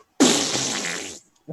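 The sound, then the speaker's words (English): A loud, sustained blown raspberry lasts about a second, a voice imitating a long fart, followed by a brief quieter vocal sound. “I'm going to pull the bag of reindeer farts and just literally let it rip.”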